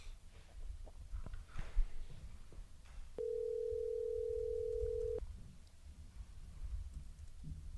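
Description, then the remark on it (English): A single two-second ringback tone from a telephone call ringing out to a fighter before a catchweight fight, steady and mid-pitched, over a low background rumble with a few faint clicks before and after. “So we'll give him a ring and see what he's got to say for a few minutes here.”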